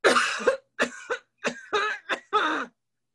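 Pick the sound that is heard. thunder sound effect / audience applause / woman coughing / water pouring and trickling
woman coughing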